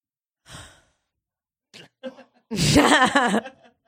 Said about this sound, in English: Sorry, I yawned.